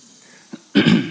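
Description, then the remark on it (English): A short, raspy throat clearing from a frog in the throat: a faint brief catch followed by one loud, harsh burst of rough noise that trails off after about a third of a second. No speech is present. “Excuse me, I've got a frog in my throat.”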